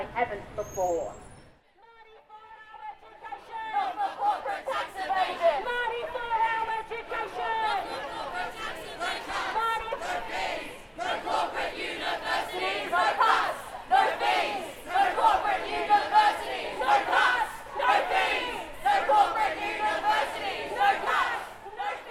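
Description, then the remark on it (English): Hundreds of protesting students march down CBD streets in the rain, disrupting traffic, chanting and shouting together in a steady, rhythmic surge, loud and continuous after a brief quiet start, with traffic noise faintly underneath. “Although it was raining on the day, hundreds of students still marched down CBD streets, disrupting traffic and voicing their anger.”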